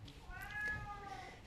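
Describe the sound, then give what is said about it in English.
A single drawn-out meow from a female cat at a cat protection society, rising and then falling in pitch, over a low background rumble. “honestly, I know we've heard from you.”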